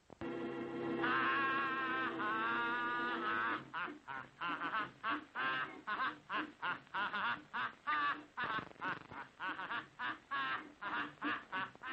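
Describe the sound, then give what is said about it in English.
A man's voice imitates a pelican's squawk over a title card, starting with a long, loud, nasal honking call and breaking into a rapid, rhythmic series of short squawking bursts, alone. “The title card is accompanied by a man making noises, apparently intended to sound like a pelican squawk.”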